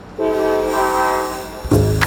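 A passenger train rolling off from Toronto to Ottawa sounds its horn, a steady, sustained multi-tone chord over the rumble of the train, then a louder burst of rail noise rises near the end.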